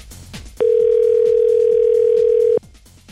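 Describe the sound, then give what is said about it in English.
A single loud, steady ringback tone on an outgoing phone call to a gas station, sounding for about two seconds before cutting off, with faint line noise before and after. “Here, try this one. We'll see if they think I called them already, too.”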